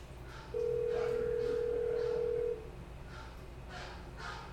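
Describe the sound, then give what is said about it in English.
A single steady electronic tone, like a phone ringback signal, from a smart speaker calling a misplaced phone, sounds clearly for about two seconds, then stops, leaving faint background noise. “Alexa, call my phone.”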